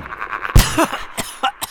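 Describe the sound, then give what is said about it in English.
A sharp, forceful cough caused by dust in a basement bursts out, followed by a strained, rising throaty sound and a few shorter, rougher coughs trailing off unevenly. “Damn it! This dust!”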